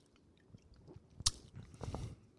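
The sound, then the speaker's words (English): A sharp clink as drinks are toasted, then a few wet sips of a fizzy pineapple drink in short noisy bursts, fairly quiet with no talking. “All right, we're gonna have a cheers and a sip.”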